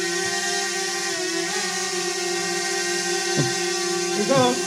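A drone's motors buzz after takeoff in a steady, high-pitched whine rich in overtones, after the app, drone and controller were restarted. The pitch dips and wavers briefly twice near the end as the rotors adjust, with no voices over it.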